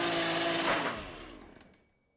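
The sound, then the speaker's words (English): Leatherface's chainsaw engine catches on a pull start and buzzes loudly for about a second, then sputters, winds down in pitch and dies out. No one speaks. “Not a reliable chainsaw.”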